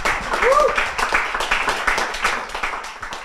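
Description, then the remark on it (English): An audience applauding a panel at the close of a discussion: dense, steady clapping from many hands fills the whole stretch, loud throughout, with a brief rising whoop or cheer near the start. “Give a round of applause for our panel.”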